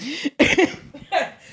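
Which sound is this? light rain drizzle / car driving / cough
cough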